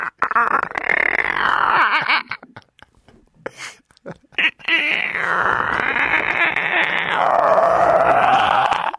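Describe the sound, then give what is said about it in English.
A voice mimics the rumbling, gurgling noise of a stomach after eating cereal: a growling burst, a short pause with a few small sputters, then a longer, louder rumbling stretch, continuous. “It sounds like I'm farting in me.”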